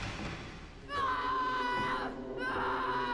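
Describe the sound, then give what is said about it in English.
A boy screams loudly in two long, sustained bursts, the first lasting about a second and the second starting after a brief pause, over a busy background. “What is he screaming at?”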